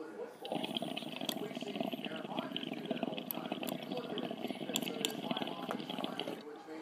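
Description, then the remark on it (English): A water rig bubbles and gurgles steadily for several seconds as someone takes a long dab hit of flan, gelato crumble and gelato sauce, the rapid churning sound fairly loud before cutting off. “And we better fucking take this dab of the flan, gelato, crumble, and some gelato sauce.”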